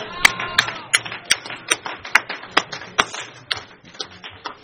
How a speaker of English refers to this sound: Thanks, Joe. Wonderful. Let's give a round of applause for Joe.